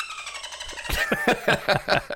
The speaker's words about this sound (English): That's the best correct sound effect ever. The dolphin says it's true.